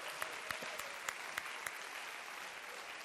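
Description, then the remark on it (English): A crowd claps steadily, a dense wash of many hands with a few sharper individual claps standing out, sustained at an even level for a few seconds without any talk. “Can y'all just clap for me on that?”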